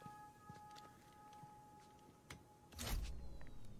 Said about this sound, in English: Why would you lock the door? Don't you need to get out?